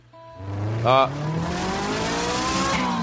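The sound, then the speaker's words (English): A voice imitates a car engine being started up, sputtering to life with a brief burst, then a steady rising rev that climbs in pitch for a few seconds, fairly loud. “Let me start it up.”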